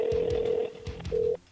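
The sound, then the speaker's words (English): A quiet phone ringtone heard while calling: a steady electronic tone rings for about half a second, pauses, then rings again briefly, with faint low thumps underneath. “Got a very quiet ringtone.”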